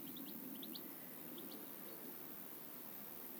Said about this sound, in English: And there's a goldfinch in the trees behind me. Can you hear it?